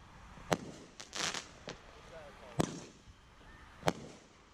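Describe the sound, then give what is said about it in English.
A 500-gram Wise Guy brand fireworks cake fires sharp, loud bangs at uneven intervals, with a quick burst of crackling from a crackling bouquet effect in between, over a low background hiss with faint voices. “A crackling bouquet.”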